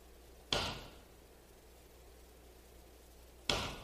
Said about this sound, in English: So here's what I want you to do. I just want you to listen to the hammering.